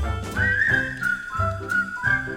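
A bright, clear whistled melody rises and holds over a steady plucked musical accompaniment, the tune sustained and prominent with no voices.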